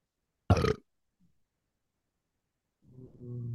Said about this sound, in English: I burped. I was Oh, proud of myself. I thought you said something before the burp.